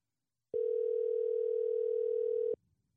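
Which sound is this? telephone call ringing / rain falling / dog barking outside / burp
telephone call ringing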